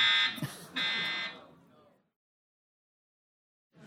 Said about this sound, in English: The fire alarm goes off, you get up, you walk out.